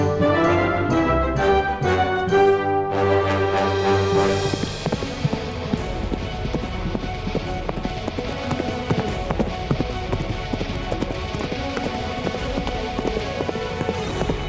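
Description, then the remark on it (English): A brief musical intro gives way to horses galloping north along an iron road, a dense, steady patter of hooves clip-clopping with a rough, dusty texture that continues to the end. “A cloud of dust trails behind you as your horses gallop north along the iron road.”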